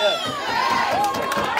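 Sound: audience shouting and cheering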